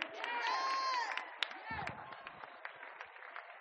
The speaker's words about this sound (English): Clap your hand and tell the Lord, yeah.